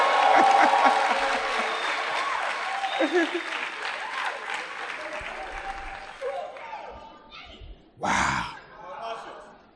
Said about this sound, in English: Hallelujah. Eternal baby. Clap for the eternal baby.